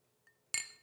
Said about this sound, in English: Cheers, mate. Thanks. Hold on, was that a good clink for you guys?